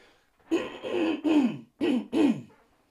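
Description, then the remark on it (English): A person coughs and clears their throat in a quick series of about five rough bursts, roughly evenly spaced, with no talking. “excuse me, I'm going to cough again.”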